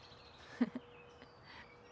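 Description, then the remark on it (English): Faint birds, coming back to bird feeders, chirp in scattered bursts against a quiet outdoor background, with a couple of soft low thumps near the start and no one talking. “The chorus of birds is definitely echoing confirmation.”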